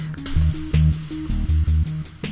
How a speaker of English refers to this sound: You flip up the tab of the cola can to open it. Instantly, you hear the fizzy gas escaping.